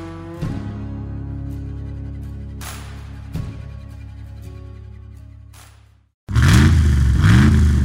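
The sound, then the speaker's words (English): The deep Hemi V8 engine of a Ram pickup truck rumbles steadily with a couple of sharp clunks, cuts out briefly, then roars back loud, revving up and down in rising and falling surges. “Now's the time to upgrade to a new Ram truck. With unrivaled Hemi V8 power and a max brake towing capacity of up to 4.5 tonnes.”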